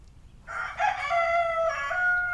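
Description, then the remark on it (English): A single rooster crows a long, loud cock-a-doodle-doo early in the morning, its strained call rising and then holding in a drawn-out final note, with no voices around it. “That dang rooster! It's too early for this.”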